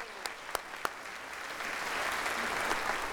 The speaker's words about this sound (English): Give him a round of applause, yes.